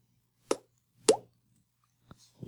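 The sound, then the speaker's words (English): Two hollow, resonant plops made by flicking a cheek with an open mouth, imitating water drops, about half a second apart, followed by a softer tap and a few faint clicks. “Can you do that thing where people like open their mouth and like flick their cheek and it sounds like water dropping?”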